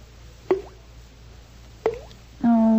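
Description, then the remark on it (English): Two distinct water drips from a bathroom faucet plop into a basin about a second apart, each a crisp, hollow little splash, followed by a sustained low tone. “goodness, the faucet in the bathroom's dripping.”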